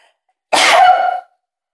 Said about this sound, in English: Hold on, I gotta sneeze.